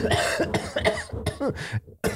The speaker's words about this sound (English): That was like Christopher Walken. That was like Christopher Walken coughing.